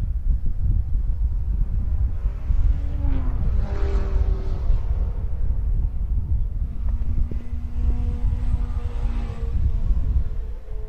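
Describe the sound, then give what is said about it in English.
Loud race car engines roar past on a track in a steady stream, their pitch rising and falling as cars sweep by, one wave around the middle and another near the end, with no voices; cars battling for 11th to 14th place come through the bus stop section during a 25-minute race. “There are those cars I was telling you about, that 11th, 12th, 13th, 14th battle coming through the bus stop section here.”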